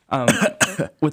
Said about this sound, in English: Crowd's nervous, too. I hear some of y'all coughing over there.